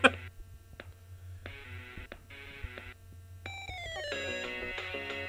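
A phone ringtone plays a bright electronic melody of repeated tonal bursts, shifting into a higher rising chime pattern, moderately loud, with a low steady hum underneath and no talking.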